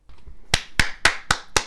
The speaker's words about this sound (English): I'm waiting for claps.